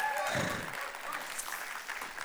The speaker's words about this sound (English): I reckon we can give a round of applause for these guys a bit more. That was pretty ordinary.